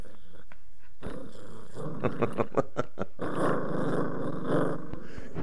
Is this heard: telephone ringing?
no